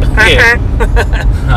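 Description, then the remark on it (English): A voice imitates a car driving really fast, with a drawn-out revving vroom followed by a few quick, choppy engine bursts, fairly loud over a low background rumble. “Remember Toad and his car? He'd always drive really fast.”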